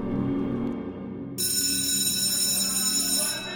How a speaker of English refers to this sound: Finally, the bell rings.